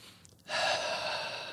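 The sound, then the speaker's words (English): A single deep breath drawn in, a soft airy hiss that starts abruptly after a brief pause and holds steady for about a second, fairly quiet, with no talking. “Take a breath now.”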